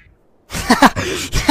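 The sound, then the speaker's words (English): After a moment of silence, a duck quacks several times in quick succession, with harsh, nasal, buzzy calls that are fairly loud. “Well, maybe you should take a long, hard look at that duck.”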